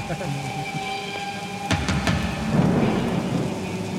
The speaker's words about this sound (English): Is it raining?